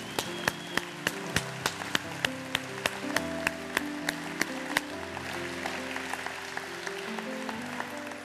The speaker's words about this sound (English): Saints, would you offer the Lord one more clap this morning?